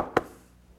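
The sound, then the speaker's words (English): A single sharp knock on a wooden door rings out, one brief hollow thud that fades quickly. “How would you like someone knocking on your door at midnight?”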